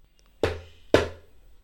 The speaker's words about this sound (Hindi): इस दिन कोई भी तेज आवाज के लिए नहीं टोकता। अवि ने फिर से ढोल बजाया।